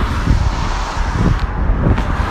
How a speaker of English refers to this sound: Just because the road is wet. Just so many cars speeding by.